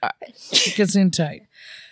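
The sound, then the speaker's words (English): A single loud sneeze with a drawn-out voiced build-up and sharp burst, followed by a soft exhaled breath. “Gesundheit. We just bless you.”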